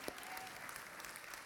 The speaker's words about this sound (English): And I feel like we should just give God a big round of applause, all right? Let's do it. Woo! God is good, amen?